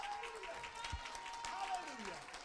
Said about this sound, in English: Clap for a moment so I can take a pause.